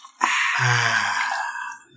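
A drink is poured from one cup into another, a steady splashing hiss that starts abruptly and runs about a second and a half before tapering off, with a brief low hum partway through.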